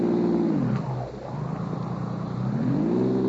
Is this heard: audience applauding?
no